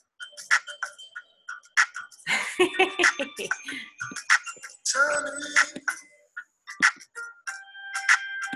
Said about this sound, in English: I would start with a little music. So I'm going to put that on.